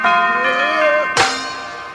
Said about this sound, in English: But the real star of this segment is the tonic note, the low C bell, who's being a lovable goof.